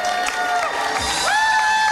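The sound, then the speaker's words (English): A comedy show audience applauds and cheers loudly and steadily for comedian Felicity Ward. A dense wash of clapping with high whoops and sustained shouts that slide upward in pitch, rising above the crowd noise. “And please give a huge round of applause to Felicity.”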